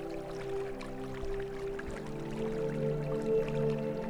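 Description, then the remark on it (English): Gentle river water trickles and drips steadily beneath a sustained low, humming drone, with scattered soft splashes. The whole scene stays quiet and continuous, with no voices. “The river joins in this dance with the moon.”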